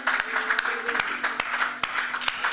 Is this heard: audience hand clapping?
yes